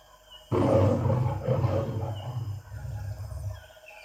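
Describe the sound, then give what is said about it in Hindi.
A hungry lion, seeing a small rabbit approach, gives a deep, rumbling roar that bursts in loudly and rolls on in a few throaty pulses, gradually weakening over about three seconds. No one speaks. “जब उसने सिर्फ एक छोटे से खरगोश को अपनी ओर आते देखा तो वह गरज गया।”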